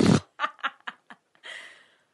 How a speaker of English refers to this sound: Bronan is making fart noises with a balloon